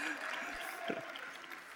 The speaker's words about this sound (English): You can applaud. Sure, yes.